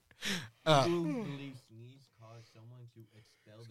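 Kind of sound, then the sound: human body sound, yawn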